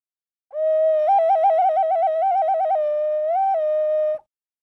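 An ancient rain whistle is blown in one long, loud breath: a steady reedy tone that breaks into a rapid warbling trill between two pitches, then swells upward briefly before stopping.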